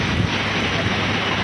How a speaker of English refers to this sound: I watched the pounding rain, the blustering winds, and the gushing stream of water flow down the street.